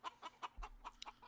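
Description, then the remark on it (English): A voice imitates a clucking chicken, a quick run of about seven short clucks in a steady rhythm, fairly loud and with no other talking. “I wish I could somehow do the chicken in German.”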